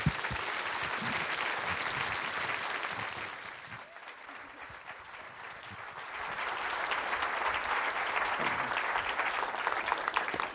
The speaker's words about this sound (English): And if we could just welcome Owen with a round of applause, that'd be fantastic.